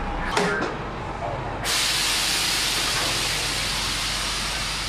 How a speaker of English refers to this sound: Here comes a bus right now. Let's go over there and take a look at it.